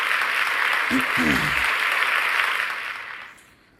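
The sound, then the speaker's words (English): A round of applause, a dense steady wash of clapping that holds for a few seconds, with a brief voiced shout early on, then tapers off and fades to quiet. “Let's go ahead and give ourselves a round of applause for finishing the episode.”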